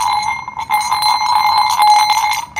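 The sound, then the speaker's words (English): Continuous jingling of horse harness bells on the road, a dense shimmering clatter of many small bells shaking together, fairly loud, with no pauses across the whole stretch. “From time to time, I love to hear these bells used for horses on the road.”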